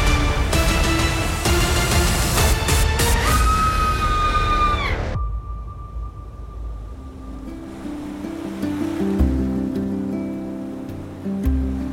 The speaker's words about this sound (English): High above the crashing waves and definitely not shark-infested waters. Definitely not.